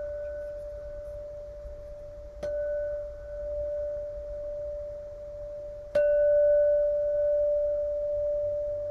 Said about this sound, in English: And the bell's going to be very subtle.